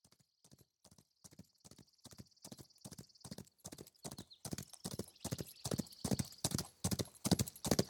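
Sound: horses galloping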